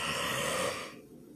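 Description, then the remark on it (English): A single long, breathy yawn: a rush of airy exhalation with a faint voiced tone under it, holding steady for most of a second before trailing off into quiet. “There's another infamous yawn.”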